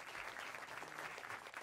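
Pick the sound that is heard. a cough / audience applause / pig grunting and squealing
audience applause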